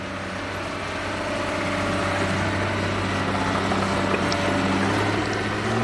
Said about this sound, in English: At the southern edge of the bay, in the Alviso Slough near San Jose, amphibious dump trucks working on the restoration dig out mud that keeps sliding back into a channel.